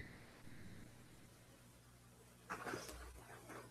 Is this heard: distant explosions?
no